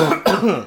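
A short, voiced sputtering cough from someone nearly choking on soda water that went down the wrong way, with a sharp burst midway and a throaty, strained tone that trails off in under a second.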